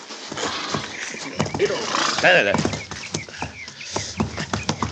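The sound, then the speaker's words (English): Horses whinny loudly near the middle while hooves clop in an uneven, busy rhythm throughout, with voices mixed into the cluttered scene, as the team of horses is cut loose from the traces. “All right, Chester, let's cut these horses loose and get them out of the traces, huh?”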